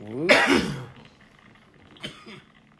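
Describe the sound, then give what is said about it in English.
A loud, raspy cough bursts out after someone takes a shot of alcohol from an Alcohol Udder (Alk Udder) dispenser, followed about a second and a half later by a shorter, weaker cough, with no talking in between. “Sound like a bong toke.”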